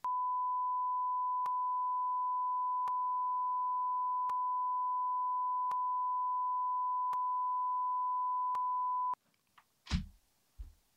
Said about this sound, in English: Beep this